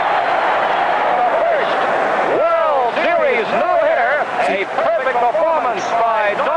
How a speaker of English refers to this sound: Strike three. Another hitter, a perfect game for Don Larsen. Jody Barrow runs out there. He leaps on Larsen. And he's warmed by his teammates. Look for this crowd roar.